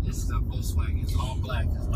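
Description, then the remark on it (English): A steady, low engine rumble fills the cabin of a moving car, droning continuously while people talk over it. “Because you're in a... what kind of car is this? A Nissan?”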